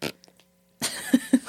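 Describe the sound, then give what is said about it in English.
A small, sputtering fart noise with a few short, low pulses close together, preceded by a brief noise and a moment of silence. “Yeah, a little chihuahua fart noise.”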